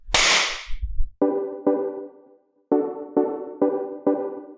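A loud, sharp hand clap bursts out first, then six more quick claps follow in an uneven rhythm, each with a short ringing tail. No one speaks.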